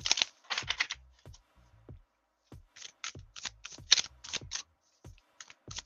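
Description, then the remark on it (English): Shuffling of tarot cards for an Aries reading: crisp, papery slaps and riffles arrive in quick bursts, separated by short pauses. No one speaks. “Let's shuffle up a few times.”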